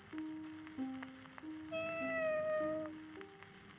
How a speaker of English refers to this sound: The cat is getting hungry again. Its two sets of eyes stare at me, like an old man woken angrily from his nap.